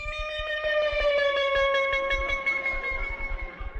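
A train horn blares in one long, steady chord of several tones, its pitch sagging slightly as it holds, over a rhythmic low rumble and clatter underneath.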